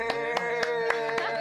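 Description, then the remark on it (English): Hands clap five times in a steady, even rhythm, each crisp and moderately loud, layered over a sustained humming musical tone in the background. “Clap it up.”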